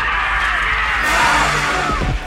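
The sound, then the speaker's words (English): A single scream rises briefly out of a dense, roaring wash of noise in a film scene where John McClane is about to hit Deputy Chief of Police Dwayne Robinson, partly buried under the rumbling chaos of the action. “And just as we're in the moment where John McClane is about to hit Deputy Chief of Police Dwayne Robinson, we hear a scream.”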